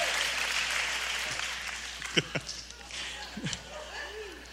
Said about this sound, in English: Hey, give the Lord a hand clap.